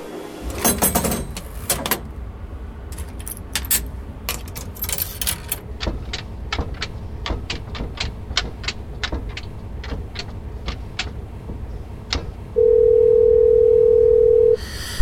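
A payphone call being dialed: some clattering handling noises, then a steady run of sharp, evenly spaced button clicks, ending with a loud continuous phone tone. No one speaks.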